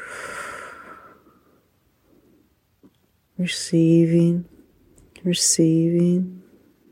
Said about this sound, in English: Breathing in, ocean breath out,